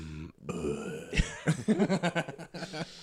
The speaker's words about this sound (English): Again, nice beer burp. Yeah, I'll make sure to like pump it right ASMR. Into the mic next time. Yeah, beer. ASMR gas.